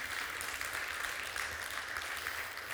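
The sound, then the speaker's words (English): An audience breaks into sustained applause in the morning, a dense, steady wash of many hands clapping at once, even from start to finish. “Come on, would you give him a great round of applause this morning?”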